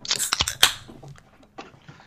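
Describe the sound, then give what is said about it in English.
A beer can is cracked open: a few crinkly clicks, then one sharp snap with a bright fizzing hiss, followed by faint rustling and a quieter click. “I'm going to crack one right now.”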